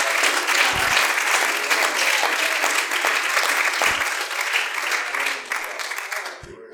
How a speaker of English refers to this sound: Are you thankful to know Him this morning? Come on, clap your hands. Give Him a shout of praise.